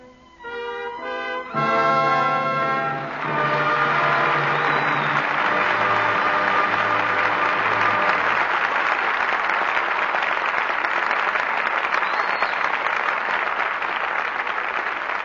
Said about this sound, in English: But your applause for tonight's performance calls our stars back to the footlights. And here are Norma Shearer, Walter Pigeon, and Adolphe Monjou.